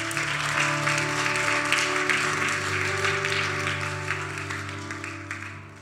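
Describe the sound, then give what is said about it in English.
A church audience claps steadily for several seconds, a dense wash of applause over a low sustained hum, gradually thinning toward the end. “Come on, can we clap our hands?”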